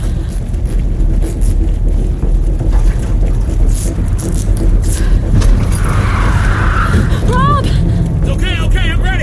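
A car drives along with a steady, loud low engine rumble and road noise throughout, plus some brief high chirping sounds near the end.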